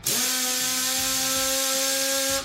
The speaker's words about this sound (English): Drill. Drill.